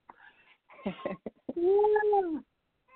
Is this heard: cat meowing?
yes